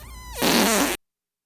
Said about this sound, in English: Oh. We cut too soon. Didn't get the last fart.